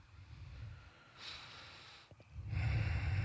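Heavy, close-up breathing rushes into the microphone in a few loud, noisy breaths, with a short snort-like catch midway and a stronger exhale at the end. No one speaks.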